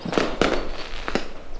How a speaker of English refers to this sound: You hear that? Fireworks. I'd know them anywhere, because they're a form of fire